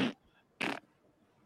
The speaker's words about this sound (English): I got my opera set up to fart every time I click on a tab. It goes.